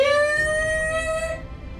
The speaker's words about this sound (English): You start to hear sirens now.